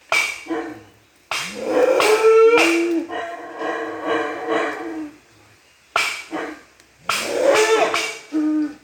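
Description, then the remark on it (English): Loud monkey calls ring out close by, harsh howling whoops with rising and falling pitch, delivered in two bursts separated by a brief pause, with no talking. “I don't know if he had a recording of an actual monkey that he was playing at high volume or if he was actually making the monkey sound.”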